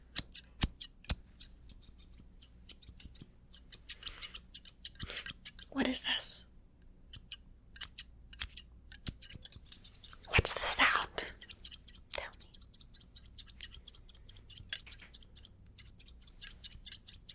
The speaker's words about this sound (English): Scissors. Scissors. Scissors. Snip. Scissors. Snip. Scissors. Snip. As your reward, I'm just gonna cut your hair a little, okay?